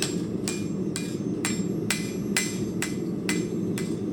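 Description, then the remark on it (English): A blacksmith's hammer forges metal in a steady, even rhythm in a blacksmith shop, about nine ringing blows roughly twice a second, over a constant low rumble of shop noise. “And this is probably the key instrument in this shop is my hammer.”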